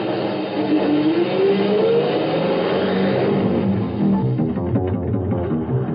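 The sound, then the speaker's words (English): A semi truck engine roars and accelerates, its pitch climbing steadily before settling into a loud, rumbling drone that continues throughout, with no voices. “Hurry, semi. Can't you drive any faster?”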